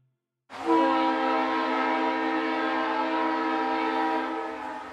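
A loud, steady train horn blares for about four and a half seconds, a single sustained chord that begins abruptly after a brief silence and fades slightly at the end.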